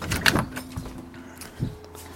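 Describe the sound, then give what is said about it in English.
A person climbing stairs into a main house in the morning: wooden creaks and soft thuds of footsteps climbing, followed by a door being opened with a brief scraping slide and a low mechanical hum underneath. No one speaks. “And me creaking up the stairs into the main house.”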